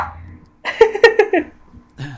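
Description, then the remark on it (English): A dog lets out a quick burst of four sharp, yappy barks, followed by a short pause and one more brief bark-like sound near the end. “I think the dog speaks for me.”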